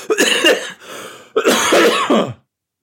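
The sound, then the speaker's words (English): A man's deep, raspy cough comes in two loud, drawn-out bursts separated by a short pause, with no talking, then silence. “He coughs again.”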